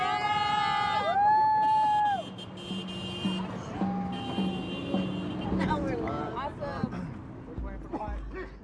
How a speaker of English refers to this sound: The sun low, a small convoy of support cars encourages us with honking and yelling as we finish out the day.